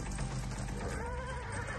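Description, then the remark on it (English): A horse whinnies loudly, its shaky, wavering neigh rising and falling over a dense rumble of background noise, with no one speaking. “See, now one of y'all big motherfuckers should have tackled the horse.”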